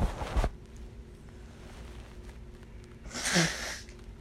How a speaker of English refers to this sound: Sorry, I had to blow my nose.